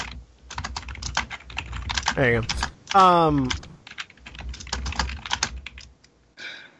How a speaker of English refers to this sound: typing very loud. Sorry, his keyboard is... Yeah, I know. Loud.